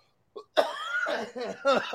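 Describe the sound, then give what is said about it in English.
A short burst, then a loud run of raspy, wheezy coughing with strained, breathy vocal tones, from a person with asthma caused by COVID coughing after laughing. “So whenever I laugh or the prolonged, I cough.”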